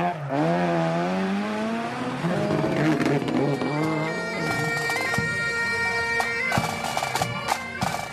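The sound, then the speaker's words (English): Rally car engines roar and rise in pitch as they rev hard through gear changes, with a loud, continuous mechanical drone and sharp bursts of crackling noise toward the end. “This is more of what you'd expect.”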